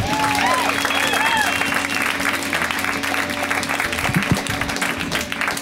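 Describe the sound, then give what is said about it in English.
A crowd at a stand-up comedy show applauds steadily for the next comic, dense hand clapping filling the whole stretch at a strong, even level, with some cheering and a few whoops rising over the clapping. “Come on, flourish a little more with your hand clapping.”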